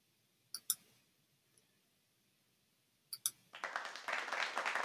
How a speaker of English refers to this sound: Yay, applause.